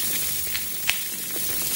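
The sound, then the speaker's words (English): A steady, soft fizzing hiss from nitro beer, sprinkled with tiny crackling pops and one sharper snap, with no voices over it. “Ooh. You hear that? Yeah, it's a bit fizzy. It's nitro.”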